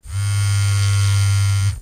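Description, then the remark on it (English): A phone vibrating on vibrate mode, a steady low-pitched buzzing drone that holds evenly for nearly two seconds before cutting off, with no voices. “Mary Montgomery's hand slowly began to appear when my phone started buzzing.”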